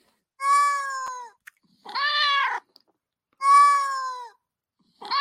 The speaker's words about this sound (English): Oh, we got the cat here. We got a cat. Oh, there's a cat.